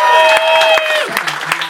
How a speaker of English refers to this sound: Welcome to Kill Tony, everyone. Make some fucking noise, you live audience.